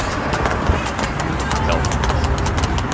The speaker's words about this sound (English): Horses are running on the highway.